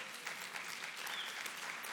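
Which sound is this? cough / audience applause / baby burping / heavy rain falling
audience applause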